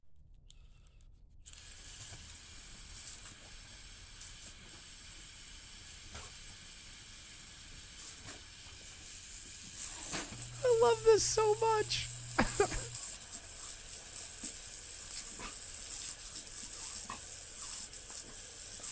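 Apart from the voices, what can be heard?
garden hose spraying water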